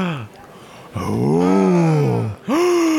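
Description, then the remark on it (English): Voices imitate shocked restaurant patrons gasping at an order of a bean tower: a short falling cry, then a long, drawn-out rising and falling 'ooh', and a final gasp starting. All are loud and exaggerated. “The other restaurant patrons gasp at …'s gonna eat the bean tower.”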